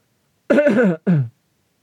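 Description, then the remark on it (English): Someone clears their throat in two quick, gruff bursts, a longer rasping one followed by a shorter cough-like rasp, then silence. “I apologize for coughing.”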